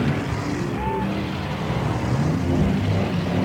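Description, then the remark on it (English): A dense wash of city traffic layered into the sound piece Citophony by Barrett Golding: steady engine rumble from many cars, with a brief tonal whine rising out of the mix, continuous and fairly loud with no pauses. “And traffic.”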